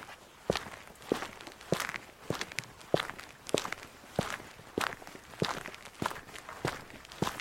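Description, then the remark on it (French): Steady footsteps of a person continuing on foot after a bicycle's front tyre punctured, walking at an even pace, about a dozen crisp, sharp steps in a regular rhythm, heard alone with no talking. “Je continue à pied.”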